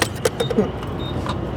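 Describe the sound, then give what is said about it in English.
Outdoor gas station ambience at a gas station just outside Missoula, Montana, where a few cars with out-of-state license plates are fueling up: a steady low rumble of idling cars, with a few brief metallic clinks and jingles and faint indistinct voices in the background. “It's still a few weeks to peak tourist season in Montana, but a few cars with out-of-state license plates are fueling up at this gas station just outside of Missoula.”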